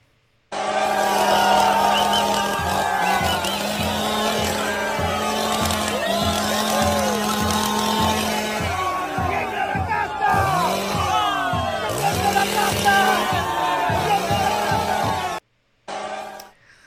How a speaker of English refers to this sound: Then there was my personal favorite, the chainsaw celebration. Please roll that tape.